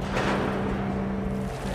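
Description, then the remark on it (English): A large container ship's engine drones in a steady, deep hum close by at the port of Felixstowe in southeast England, layered over a constant wash of water and harbor noise with no voices. “Now, I'm finally close up with one of these ships.”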